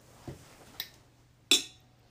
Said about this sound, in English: Thanks for joining us, and that was a loud clink.